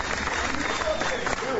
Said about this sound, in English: One of the things that you might notice is not only the statement that he made, but the applause, the sustained applause that he got.